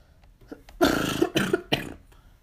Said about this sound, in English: I close my mouth and cough.